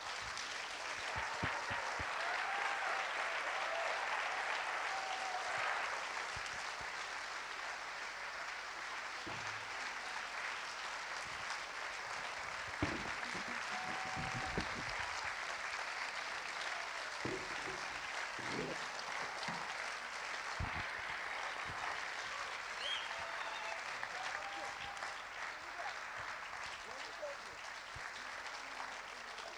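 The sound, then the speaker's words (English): An audience claps steadily for about thirty seconds as moms with their kids walk onto the stage, a dense, unbroken wash of applause at an even loudness with faint cheers scattered through it. “So would you guys do me a favor and go ahead and have a nice, long, welcoming transition clap for the moms as they make their way to the stage.”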